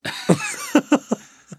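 A run of five close, harsh coughs in an uneven rhythm, each a short rough burst, with faint breathy noise between them and a softer final cough.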